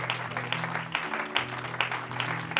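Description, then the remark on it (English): An audience in a church on a Sunday morning applauds for the Lord in a dense, steady wash of clapping with sharper accents about twice a second, while low sustained organ-like tones hum underneath. No one speaks. “Let's give a hand clap to the Lord this morning.”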